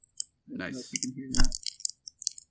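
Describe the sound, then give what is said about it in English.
Two six-sided dice rattle and clatter in a quick series of sharp clicks that taper off near the end, with a brief stretch of voice at the start, rolled as a 2d6 roll for labor. “Anyway, so now we have to do the actual 2d6 roll for labor. Yep. All right, get a little dice ASMR.”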